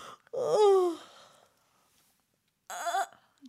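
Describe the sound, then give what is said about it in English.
A mother gives a big, exaggerated demonstration yawn for her child at bedtime, loud, its breathy voice sliding downward in pitch for about a second, followed after a brief silence by a shorter voiced murmur. “Try giving a big yawn. Like this.”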